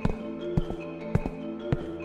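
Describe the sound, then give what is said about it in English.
Four slow, evenly spaced knocks on a door, each a dull, heavy thud, over a steady low hum with no voices. “Hold up, someone's at the door.”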